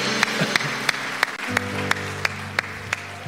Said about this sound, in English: Can we give these five individuals that raised their hand a huge round of applause? Yeah.